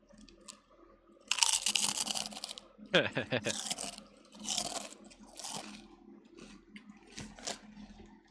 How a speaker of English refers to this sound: Can we put as many chips as we want in our mouth?